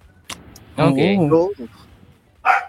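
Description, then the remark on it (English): A corgi lets out a loud, drawn-out, wavering bark that bends up and down in pitch, followed by a few short yips and a brief voice at the end. “You have one dog.”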